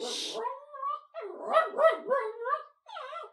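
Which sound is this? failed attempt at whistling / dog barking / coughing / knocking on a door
dog barking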